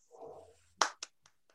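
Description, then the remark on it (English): A few scattered hand claps from an audience after a talk: one sharp clap, a second soon after, then two fainter ones trailing off, following a soft low murmur. “People actually applauding.”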